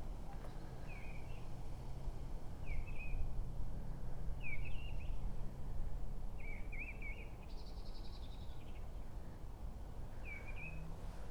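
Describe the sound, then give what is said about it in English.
A bird sings at a church with a graveyard on a windy day, repeating short, bright whistled phrases every couple of seconds, fairly clear, over a steady rumble of wind and background noise. “There is a lovely bird singing at the minute.”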